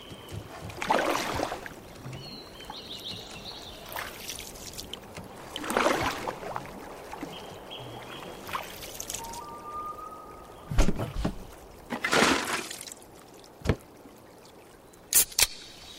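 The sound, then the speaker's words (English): Gentle water laps and trickles around a drifting canoe in a Coors Light advertisement, with soft splashes and hollow knocks against the hull coming in irregular bursts over a quiet, steady wash. “Coors Light, mountain cold refreshment, made to chill in a canoe holding a beer instead of a paddle.”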